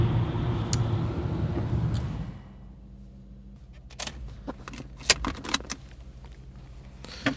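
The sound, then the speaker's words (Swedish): A car's low engine and road rumble runs for a couple of seconds after almost five hours of driving, then cuts off as the car arrives and stops, leaving near quiet with keys jangling and a few sharp clicks. “Då är vi framme.”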